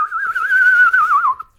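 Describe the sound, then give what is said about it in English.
A single sustained whistle from a person whistling while inhaling, breathy, holding a steady mid-high pitch with slight wavers before dipping and trailing off after about a second and a half. “Can either of you whistle? Yes. I'm inhaling, by the way.”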